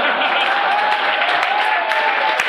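An audience breaks into steady, dense applause, a continuous wash of many hands clapping with scattered sharper claps and a murmur of crowd noise underneath, holding at an even loud level throughout.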